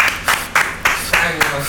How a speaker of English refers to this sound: Let's get some round of applause for Black Excellence